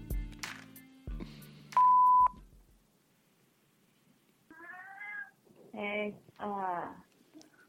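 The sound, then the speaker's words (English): A few electronic beeps and tones, then a cat meows three times in a row, loud, with drawn-out, wavering cries. “My cat won't shut up.”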